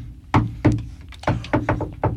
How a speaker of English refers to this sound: You want to knock on the door this time? I mean, you're so good at it. There you go.